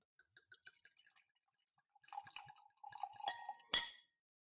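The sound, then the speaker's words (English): Wine pours into a glass with a gurgling, bubbling trickle building over a couple of seconds, ending in a bright clink of glass, fairly quiet, preceded by a few faint drips. “So let's pour some wine. I love the sound of the pouring.”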